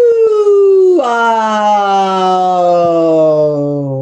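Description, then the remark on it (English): A lone voice doing a vocal exercise holds a high, squeaky tone that drifts downward, then abruptly cracks into a lower, buzzier squawk and keeps sliding slowly lower, from the highest register toward the lowest, loud and steady, with no words. “And so for vocal exercises, I will do the same thing often, and it's about the squeak and the squawk.”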